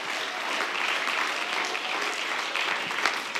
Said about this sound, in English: I want you to clap your hands to the Lord and give Him praise right now. Hallelujah.